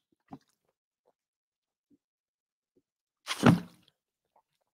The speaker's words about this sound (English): Had to take a sip of my water.